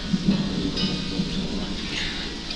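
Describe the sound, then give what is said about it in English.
A low, rolling rumble of thunder lingers beneath a steady hiss of rain, moderately loud and continuous for a few seconds, with no voices. “There's a storm brewing, Gus.”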